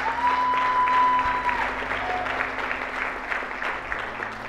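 A church audience claps steadily for several seconds for people being baptized, a dense, even patter of many hands at a loud, consistent level, with a faint sustained tone briefly audible early on and no clear talking.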